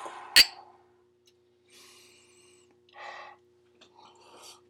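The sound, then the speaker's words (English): A glass clinks once, followed by a few soft, airy, cautious slurping sips of a heavy-poured beer with short pauses between them, with no talking. “That was a very cautious sip.”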